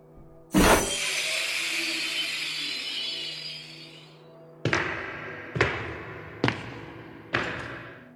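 A loud crash of glass shattering as someone breaks through glass, followed by several seconds of tinkling shards, then four sharp smashing blows spaced roughly a second apart as more glass is struck.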